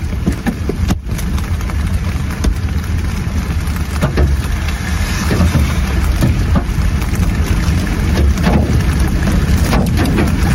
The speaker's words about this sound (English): during a hailstorm like most people won't ever see. Oh! That was a softball.